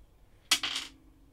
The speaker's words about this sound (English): So let's roll the dice.